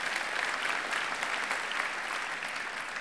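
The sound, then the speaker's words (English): An audience applauds steadily, a dense wash of many hands clapping at an even, moderately loud level that carries through the whole three seconds without a break or any voice on top. “Yeah, you can clap.”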